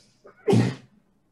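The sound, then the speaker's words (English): A single quick sneeze: a faint catch of breath, then a short, breathy burst that fades within a fraction of a second. No one speaks. “Bless you.”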